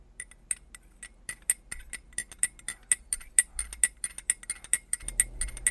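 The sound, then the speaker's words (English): A spoon stirs iced coffee, made from decaf instant Nescafe with three ice cubes and cold water, in a glass, producing a quick, uneven run of bright, ringing clinks that grow busier partway through, with no talking. “3 ice cubes, not 4. Cold water. Stir.”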